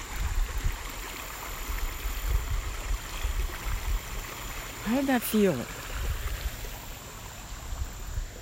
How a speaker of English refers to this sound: It's a lovely little creek. It's got the waters cascading over stones, right? And that's the sound that human beings have listened to and evolved with for centuries.